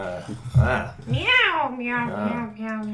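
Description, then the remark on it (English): A person's voice imitates a cat, giving a quick series of drawn-out meows in a row, fairly loud, each rising then falling in pitch. “Meow, meow, meow.”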